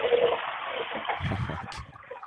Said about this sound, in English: I thought he was going to shit. I'm glad it was just a flush.